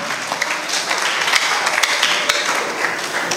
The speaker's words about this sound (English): anybody who is not clapping, you are a big suspect. Pressure.